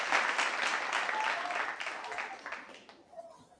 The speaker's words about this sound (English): Let's give him a round of applause for that amazing answer.